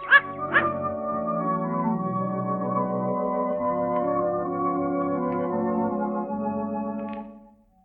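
A dog gives two quick, sharp barks at the start, followed by a long, steady droning tone that holds for several seconds before fading out.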